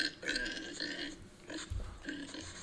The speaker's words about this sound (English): Oh, it's a pig. That's where beef comes from, right?